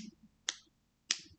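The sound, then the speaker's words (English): Two sharp, crisp clicks of fingernails tapping together, about half a second apart, fairly loud against near silence. “I'm clicking my nails.”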